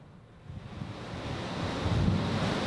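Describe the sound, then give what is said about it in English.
Ocean surf washing in as a song recording fades out, a broad roaring hiss that swells steadily louder over a couple of seconds as a wave breaks, with no voices, just rushing water and some wind. “And that's one of the few ones that fades to a wave.”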